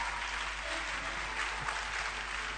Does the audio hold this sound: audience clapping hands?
yes